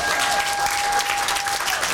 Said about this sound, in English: Hallelujah. Hallelujah. Let's give the Lord a great applause.